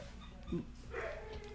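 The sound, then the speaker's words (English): A dog lets out a short bark followed by high, whiny whimpering, fairly quiet, against a low background hum. “The dog is causing a disturbance again.”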